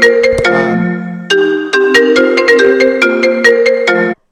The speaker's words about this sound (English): What was that? That was his cell phone, I believe